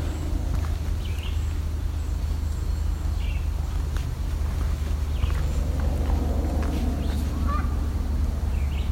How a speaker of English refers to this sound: Canada goose going over.